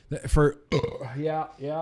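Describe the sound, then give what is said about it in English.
Several loud burps from a person drinking a lightly carbonated stout come in quick succession, low, throaty and drawn out, the middle one stretching longest before a final shorter belch. “I'm going to try not to talk through them, but for as lightly carbonated as this stout is, It's make just gives me the burps, you know?”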